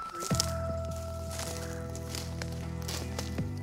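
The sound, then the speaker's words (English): Yellow plastic crime scene police tape crinkles and squeaks as it is stretched around the perimeter of a dig site and tied, with a sharper snap near the start and again near the end, over a steady low mechanical hum. “he seals the whole area off with yellow crime scene police tape.”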